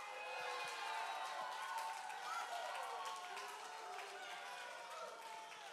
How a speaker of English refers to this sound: You have to keep clapping. I have more setup time required.